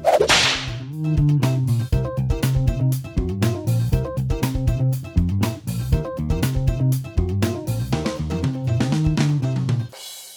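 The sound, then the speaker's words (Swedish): A single sharp whip crack snaps at the very start, then a bouncy, rhythmic tune with punchy percussion plays on for about ten seconds before cutting off. “Denna veckan har vi piskat fladdermöss och vampyrer i Konamis Castlevania Harmony of Despair.”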